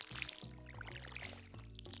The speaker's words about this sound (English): I'm gonna water the plants.